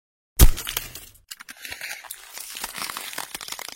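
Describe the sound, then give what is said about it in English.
A single hard hammer blow lands on a brittle, glassy material, the self-healing material of a prototype's body and windows, with a heavy thud, followed by a few seconds of sharp, irregular crackling and crinkling as cracks spread. “Notice how the cracks healed themselves, and the impact site of the hammer is now completely gone.”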